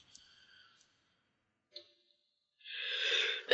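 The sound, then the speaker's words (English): A single sneeze bursts out loud near the end, after a quiet stretch with a faint breathy intake beforehand; no one speaks. “Bless you.”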